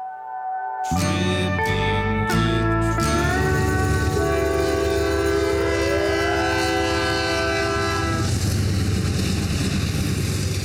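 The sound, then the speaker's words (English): A train horn blasts in several loud, sustained honks as a passing train rumbles by, its heavy rolling noise continuing steadily after the horn stops. “All right, so we heard him honking coming across here.”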